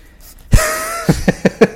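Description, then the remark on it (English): A pug exhales with a heavy, slightly whiny breath, then sniffs four quick times in a rapid, uneven rhythm. Each sniff is short and airy. No one speaks. “We have a pug that is parading around, being super clingy, and may try to incorporate itself with heavy breathing, sniffing, and unwanted affection, as she is right now”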